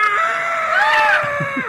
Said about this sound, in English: says here he is suing Alan Ball over the blood-curdling screams emitted by Alan Ball's exotic birds. Yes, peacocks.